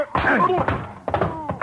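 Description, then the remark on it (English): A chaotic tumble: a man groans and grunts as he goes down, taking a chair, an overcoat and half the items on a desk with him, several dull thuds and knocks landing in quick succession. “When he went down that time, he took the chair, Odell's overcoat, and half the stuff on the desk with him.”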